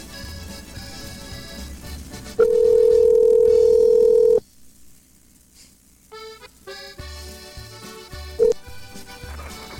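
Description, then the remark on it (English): A loud, steady electronic tone of a call ringing through to a cell phone sounds once for about two seconds over a music bed, followed later by a short beep. “Three ringy dingies. Four ringy dingies.”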